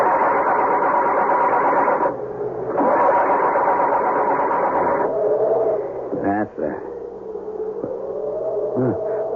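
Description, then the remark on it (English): A crashed car's engine, after the car hit a tree, cranks and rumbles in loud, rough bursts as the driver tries to start it, cutting out briefly and turning over again, with a rattling, uneven mechanical whir throughout. “The car has crashed into a tree. Muttering a silent, heartfelt prayer, he tries to start it.”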